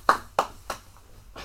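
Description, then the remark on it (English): A single person claps their hands three times at a steady, unhurried pace, each clap sharp, followed by a softer fourth sound near the end. “I'm doing the clapping.”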